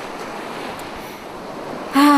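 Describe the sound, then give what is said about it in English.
A steady, hissing wash of sea waves rolling onto the shore, constant throughout, cut off at the end by a sudden louder tonal blare. “Can we just sit here and enjoy the sea for what it is?”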